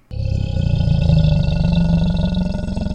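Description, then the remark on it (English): A deep, rumbling alligator roar bursts in suddenly and holds loud for about three seconds, a low guttural bellow with no voices around it. “Oh, okay, and alligators.”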